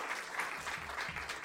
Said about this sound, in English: Yes, give her a round of applause.